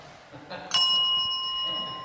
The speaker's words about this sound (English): In the side room, I found in the box of cords and things a bell.